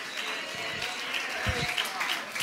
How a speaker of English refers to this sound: We might as well go ahead and praise him. We might as well go ahead and just clap our hands to the Lord and praise his name.